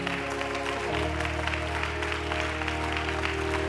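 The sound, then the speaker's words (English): A church audience claps unto the Lord steadily and loudly over sustained organ or keyboard chords, the dense applause continuing throughout without any speaking voices. “Would you set your Bibles down today and clap unto the Lord with all your might?”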